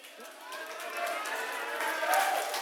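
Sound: audience round of applause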